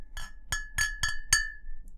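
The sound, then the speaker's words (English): Glass bottles clink together five times in quick succession as a bottle is opened, each sharp tap leaving a bright ringing tone, clear with no talking. “Before we do, though, pop it. Glass bottles because I'm fancy.”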